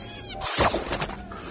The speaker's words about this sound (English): That's the bug outside Jabba's palace and that little frog thing's... Yeah, that's the space fly that gets eaten by the space frog.